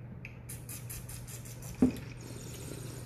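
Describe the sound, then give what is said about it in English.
A bird whistle gives a quick run of high, chirpy squeaks in an even rhythm, fading after about a second over a low steady hum, followed by a single sharp knock. “What was that? Bird whistle?”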